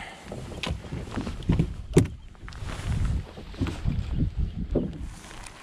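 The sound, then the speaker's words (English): Someone climbs into a small boat while fishing in the rain: irregular hollow thumps and knocks against the hull, shuffling and creaking, with light wind and water noise underneath. No one speaks. “Get in the boat.”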